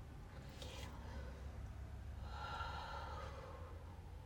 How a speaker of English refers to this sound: We're doing the breathing techniques. Get ready. You know how they always used to say when you were younger, take a deep breath and go for it?